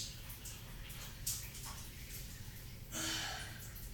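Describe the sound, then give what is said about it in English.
A shower runs steadily, its soft continuous hiss of falling water staying fairly quiet throughout, with a brief louder splash near the end. “This is a shower cast, so if you're uncomfortable, I don't know. This is gonna happen.”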